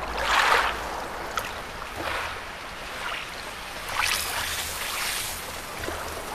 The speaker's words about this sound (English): you could end up with these waves that actually sound like they're robotic